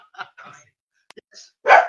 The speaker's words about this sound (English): Oh, we've got a dog phoning in.